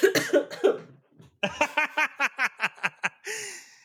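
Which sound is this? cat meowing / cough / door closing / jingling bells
cough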